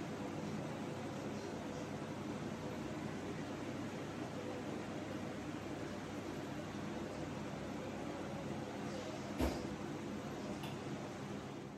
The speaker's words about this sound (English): At home, that may have just sounded like static noise to you